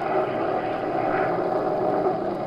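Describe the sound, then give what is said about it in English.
A small plane's engine drones steadily and loudly throughout, a continuous dense roar with no pauses or voices, as the plane flies in awful weather, rocking, rolling and practically standing still in midair. “The little plane rocked, rolled, and practically stood still in midair.”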